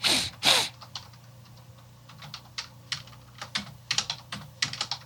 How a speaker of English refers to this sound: If I quit typing, shit.